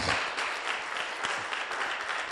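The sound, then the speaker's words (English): A church audience applauds steadily for themselves after dancing at a prayer gathering, a dense wash of many hands clapping at once, sustained and fairly loud throughout, with no clear individual claps standing out. “You should keep clap for yourselves. Please, clap for yourself.”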